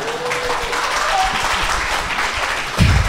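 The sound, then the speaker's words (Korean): An audience applauds steadily, a dense wash of many hands clapping throughout, with a brief low voice rising near the end as the clapping continues. “이게 박수를 맞는다는 건 여러분이 저희한테 대한 애정이 과하신 거예요, 지금.”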